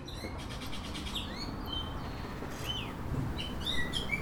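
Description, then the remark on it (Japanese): Sparrows chirp and chatter in quick, overlapping bursts of short high tweets over a steady outdoor background hum, several birds calling with no voices. “スズメたちの可愛らしいおしゃべりを聞いていたら、博士はとっても幸せな気分になってきました。”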